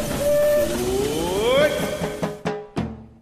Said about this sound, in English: All right, guys, let's get on the train right now. Your attention, please. The Disneyland Limited now leaving for a grand circle tour of the Magic Kingdom.